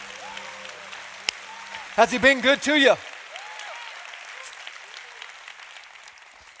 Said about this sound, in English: Now we've clapped a lot for a lot of people, but how about we turn our applause to the King of Kings, the Lord of Lords. Come on.